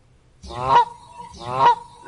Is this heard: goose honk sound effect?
yes